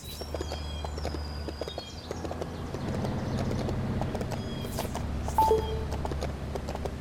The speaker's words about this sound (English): And with that said, sit back and enjoy this little horse ride. I'll be back when it's done.